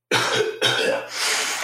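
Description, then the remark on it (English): A loud cough in two harsh bursts, followed by a rough, breathy throat-clearing rasp that trails off, with no talking. “Let me take a big cough before I do this.”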